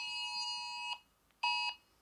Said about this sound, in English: I'm getting emergency alerts on my phone. It was a blue alert, by the way, so...